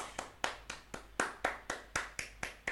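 A single pair of hands claps about eleven times in a steady, even rhythm, each clap sharp and crisp, with no voices over it.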